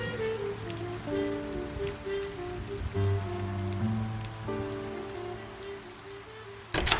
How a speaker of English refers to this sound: Others stretch their arms through the bars, careful not to catch their wrists on razored glass. With cupped palms stretched to the heavens, rain pools into their hands. When their cups nearly overflow, they lift their palms to drink the tears of God.